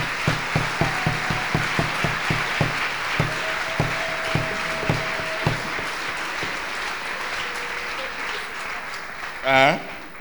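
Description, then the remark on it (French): A crowd in a hall claps for the Lord together in a steady, even rhythm over a loud wash of general applause; the beat fades after a few seconds, and a brief raised voice rings out near the end. “Hey, clap for the Lord.”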